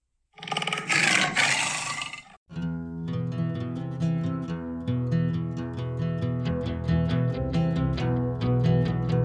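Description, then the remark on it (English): A tiger lets out one loud, raspy roar lasting about two seconds, cut off abruptly as steady, rhythmic music begins and carries on alone. “She was the world's most deadly man-eater. And she was a tiger.”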